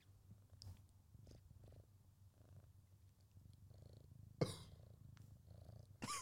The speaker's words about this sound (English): What do you have to say for yourself? Oh, it's purring, No, wait, do it again. That was so funny.